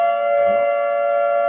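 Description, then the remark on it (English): A steady, loud siren sound effect holds one sustained pitch with bright overtones for the whole short burst, unbroken and without any voices. “Should I just hit the siren because it's Teddy and it's tradition?”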